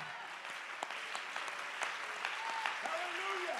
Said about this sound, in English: Somebody clap your hands and give God the praise. Is there anybody that's felt that power? Let's clap our hands and lift our voice and give him praise.